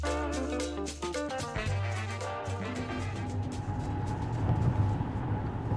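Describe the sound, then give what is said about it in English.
A short burst of music gives way to the steady low rumble of a car interior on a sunny Thursday afternoon commute from Hyde Park to Chicago's North Side in backed-up traffic: a constant engine drone with soft road noise, moderately loud and continuous, with no voices. “It's a sunny Thursday afternoon, and I'm in the car with question asker”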